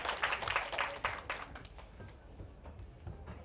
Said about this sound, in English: Fantastic. Excellent. Let's give her a clap.